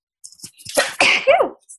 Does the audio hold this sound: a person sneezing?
yes